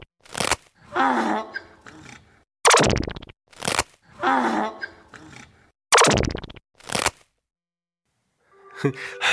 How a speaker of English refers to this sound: What is up with the sound that donkeys make? My goodness.